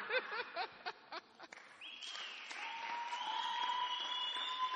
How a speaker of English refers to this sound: Please put the first one and let them clap. Put the first one and let them. Yeah, clap for this one first.